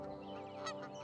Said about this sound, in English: Goose.